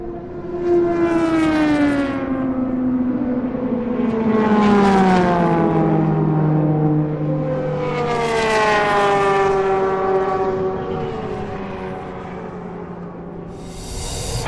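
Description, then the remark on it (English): FIA World Endurance Championship racing cars scream past on the Paul Ricard circuit, one after another, their engine notes rising and falling in long sweeping pitches as they approach and pass by, loud and continuous with no talking. “We'll leave you now with the sounds of the FIA World Endurance Championship cars from Paul Ricard, and perhaps a few moments of contemplation.”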